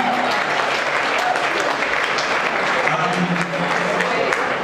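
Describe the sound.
An audience claps steadily, a dense wash of many hands at an even, fairly loud level throughout, with faint voices murmuring underneath.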